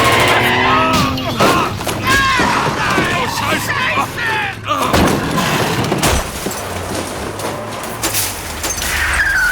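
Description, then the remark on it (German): A sharp gunshot fired at the tires of a Buick car cracks through a chaotic, noisy scene, followed by a second loud bang, with the car's engine rumble, crashing debris as it rolls over, and overlapping voices throughout. “Aber sauberer Schuss auf die Räder”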